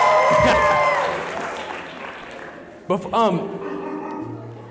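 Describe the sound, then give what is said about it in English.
A crowd applauds and cheers loudly, and as the clapping fades a short cluster of loud dog barks from dogs in the building rings out twice before the noise settles into a low murmur. “We got some dogs in the building.”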